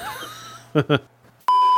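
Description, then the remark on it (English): A phone notification beep sounds as one loud, steady electronic tone that cuts in abruptly near the end and holds, following two brief vocal sounds and a quiet low hum. “I even turned my vibrate off. My phone's on silent.”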